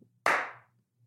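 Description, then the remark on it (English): A single sharp hand clap, the judge clap from Stuck, loud and bright, with a short ringing tail that fades within half a second. A faint low hum sits underneath, and no one speaks. “Oh, it's the stuck clap.”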